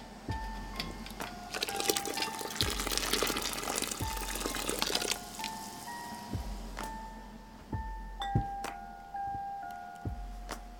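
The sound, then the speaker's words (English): Hot water from the canner splashes and gurgles as it's poured out of a canning jar gripped with a canning jar lifter, for about five seconds, then quieter bubbling continues with regular low thumps and a faint steady hum. No one speaks. “Tip the jar over to pour out that hot water and transfer it to your towel on the countertop.”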